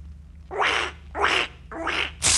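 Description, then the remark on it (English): A broken toy duck quacks in three harsh, rasping honks at an even pace, with a fourth just starting as it ends. Fairly loud over a low steady hum, no talking. “What are you doing to that duck? It's broken.”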